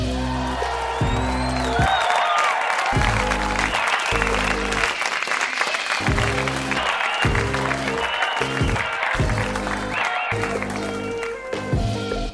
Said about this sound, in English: I didn't have to use the piped applause for once. It happened naturally. That was great. It almost threw me off.